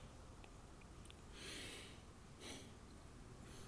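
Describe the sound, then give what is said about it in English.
A breathy yawn: a long airy intake of breath followed by a shorter exhaled puff, fairly quiet over a low background hiss, with no talking. “Sorry, I had to yawn.”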